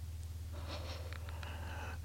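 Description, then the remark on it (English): A single drawn-out yawn, about one and a half seconds long: a breathy inhale that swells into a soft, faintly voiced sigh, heard over a steady low hum with no talking. “Boy, I've been yawning a lot lately.”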